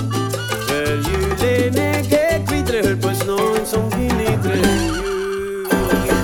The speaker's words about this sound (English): I heard the horse. That's so cool.